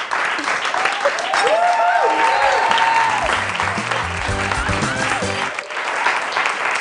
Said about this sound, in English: Ladies and gentlemen, please give it a round of applause for your new cast of Studio A.